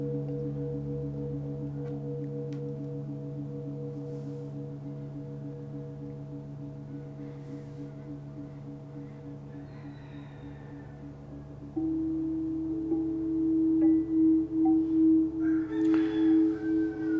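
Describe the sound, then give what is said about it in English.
Soft, sustained electronic meditation tones from the Solu mobile app hum in a steady layered drone, and a higher wavering tone joins partway through, pulsing gently, with faint outdoor sounds of roosters from Centennial Park coming through open windows of a room with 14-foot ceilings, and no talking. “But what's different this time is some tones.”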